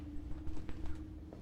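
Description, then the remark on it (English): A handful of footfalls land at an uneven walking pace over a steady low droning tone that hums underneath throughout. “And footsteps?”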